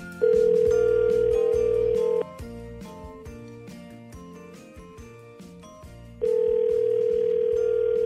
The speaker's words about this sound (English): So I am going to give our winner a call here and see if we can get her on the phone. Hopefully she answers